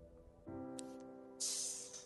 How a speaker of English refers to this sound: Little snake heads hiss along.